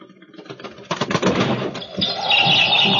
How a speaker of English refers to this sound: There's some bird out there trying to get in. Shoo it away. I can't sleep with that noise.